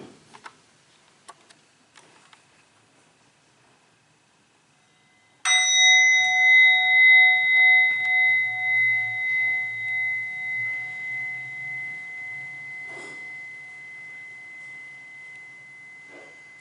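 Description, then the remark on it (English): A single bowl-like meditation bell is struck once after a few faint ticks, its bright overtones ringing out and slowly fading with a gentle wavering pulse over more than ten seconds. “And just for this brief moment while I invite the bell, practice to just simply enjoy 3 deep breaths.”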